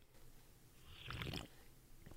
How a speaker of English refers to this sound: I'm not going to lie to you. That sounded like a professional sip. It did. In a commercial.